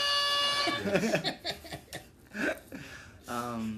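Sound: air horn blast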